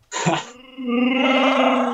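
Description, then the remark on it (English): A Chewbacca toy figure plays a recorded growling roar: a short rough burst, a brief pause, then a longer, loud, sustained howl with a buzzy, harmonic-rich tone. No one speaks. “Mine actually makes the roar.”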